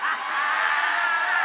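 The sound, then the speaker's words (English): A loud, sustained wash of crowd screaming and shouting as people praise God, many voices overlapping in an excited, continuous roar with no clear pauses. “You are in here screaming. Shouting, hey. Praising God, because you are so set free.”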